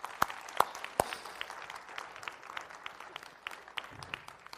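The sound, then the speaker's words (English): A crowd claps steadily, a few sharp claps standing out at the start before the applause settles into a dense, even patter that carries on throughout. “Would you give these people a big round of applause?”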